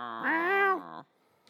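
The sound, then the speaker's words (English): A person imitates a cat with one drawn-out, nasal meow that rises and falls in pitch, fairly loud, then trails off into quiet. “Meow, meow, meow. Of course, our cats are being quiet right now.”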